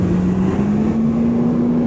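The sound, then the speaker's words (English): A Tofino Beach bus engine drones loudly, its low hum rising slightly in pitch as it drives past over a steady rumble of road noise. “There goes the Tofino Beach bus.”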